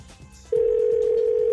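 An outgoing phone call, placed as if from an auto body shop to say a car is ready to be picked up, rings after half a second of faint background hiss, a steady mid-pitched electronic hum holding loud and unbroken to the end, with no voices.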